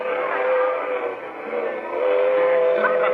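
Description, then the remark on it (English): A passenger train rumbles steadily along the rails, a continuous loud roar with a sustained whistle-like tone running through it and no talking. “After a couple of hours on the train, Bob produced a guitar.”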